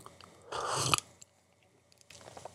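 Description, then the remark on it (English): A noisy slurp as someone sips coffee, lasting about half a second, followed by a quiet pause and a softer second burst of mouth and swallowing sounds. “Anyway, let's have a little sip of coffee.”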